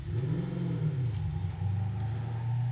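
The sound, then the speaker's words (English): A man's car engine strains and revs as he drives up toward the listeners, its low, rough drone rising and dipping unevenly as if labouring, steady and loud throughout with no voices. “Might just be the crappy sound of his car.”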